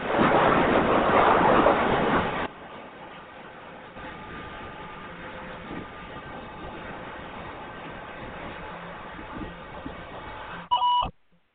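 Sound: beep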